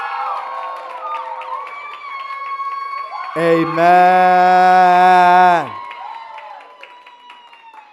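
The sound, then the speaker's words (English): A church audience at an ICGC service celebrating 35 years cheers and applauds with a steady wash of claps and voices. Midway, a loud, sustained shouted note rings out above the crowd for about two seconds before the cheering carries on. “I want you to give a round.”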